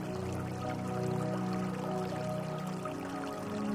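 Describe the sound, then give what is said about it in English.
Steady, continuous rushing of a river flowing smoothly over rocks, with a soft sustained tonal hum blended underneath. No one speaks, and the flow stays even throughout. “The flowing river creates a steady rhythm that calms and soothes your mind.”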